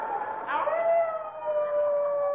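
Howling blizzard wind outside a cabin in the frozen far north of Alaska in bitterly cold winter, a continuous whistling moan whose pitch slides down early on and then holds steady, with layered overtones and no voices.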